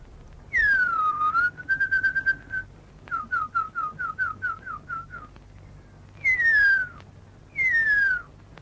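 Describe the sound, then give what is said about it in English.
A Maori tracker whistles an imitation of the call of the huia, an extinct New Zealand bird: long falling whistles, a held steady note, a quick run of about ten short chirps, then two more descending whistles, clear. “This is a Maori tracker whistling the call of the huia, a New Zealand bird that went extinct from overhunting and habitat loss in the 20th century.”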